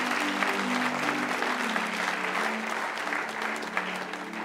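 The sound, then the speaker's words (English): Steady, sustained applause from an audience for those who prayed a prayer, a dense wash of clapping at even loudness throughout, with faint sustained tones and a few voices underneath. “Give those ones a hand that they prayed that prayer.”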